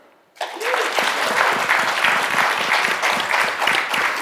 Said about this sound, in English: Was that a golf clap or was that enthusiasm? I can't tell.